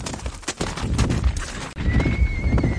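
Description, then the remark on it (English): A horse neighs loudly while hooves clatter in a rapid clip-clop as horses and a carriage hurry back to Vilna, with a high whinnying tone trailing through the second half. “And the two of them quickly got on their horses and carriage and went as quickly as possible back to Vilna.”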